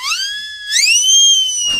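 A high-pitched, whistly whine like a dental drill, rising sharply at the start and again partway through, then holding a steady tone before cutting off with a brief noisy burst. No one speaks.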